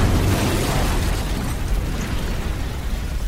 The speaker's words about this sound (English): Traveling at nearly 90 miles per hour, Soyuz 1 smashes into the Russian steppes like a 3-ton meteorite.